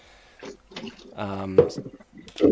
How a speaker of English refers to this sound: Sounds like you're starting to do some dishes. No, I just had to wash out a cup. It had milk in it.